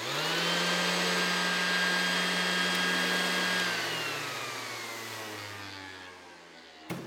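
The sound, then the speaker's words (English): An electric sander whirs loudly with a steady, buzzing motor hum, then its pitch sinks as it winds down over several seconds before cutting off with a small click. “What's the power tool attached to that? It is this. This is a sander.”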